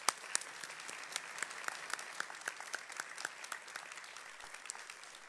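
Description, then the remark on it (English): A church audience applauds first graders steadily during a service, many hands clapping in a dense, continuous patter with sharper individual claps popping out, holding an even moderate level for several seconds without speech. “So let's give our first graders a round of applause.”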